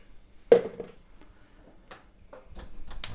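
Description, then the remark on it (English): A metal pan of water is put down onto a hob to boil, clunking with a brief ringing knock, followed by a few soft taps and clicks and a faint rising hiss toward the end. “So we've put the water on to boil, and then in the meantime we'll leave that to do its thing.”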